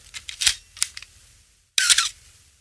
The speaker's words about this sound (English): Yeah, I didn't actually realize that's not how it's supposed to sound. That is called a squeaky shutter, apparently. So it has a squeaky shutter, which may or may not cause problems by its own.